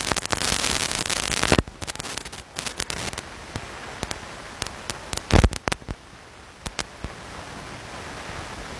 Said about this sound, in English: Rain absolutely pelting down here again. And there's non-stop since the game started.